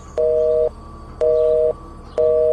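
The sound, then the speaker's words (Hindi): A phone line's disconnected tone after the caller hangs up: three steady, evenly spaced beeps, each about half a second long with equal pauses between, sounding clear with no one talking. “Phone काट दिया।”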